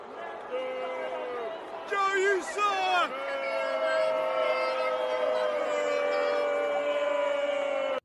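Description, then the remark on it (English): A large crowd boos loudly and steadily, a sustained drone of many voices, with a brief burst of clapping and noise mixed in early on. “Yeah, that sounded like a whole bunch of boos to me. There were some people that were clapping, but man, the boos clearly outweighed any type of cheers.”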